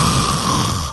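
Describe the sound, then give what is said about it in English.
A person mimics a woman snoring in bed with one short, loud, rasping breath, alone, lasting under a second. “Face down her own vomit in the moment, laid in bed, snoring.”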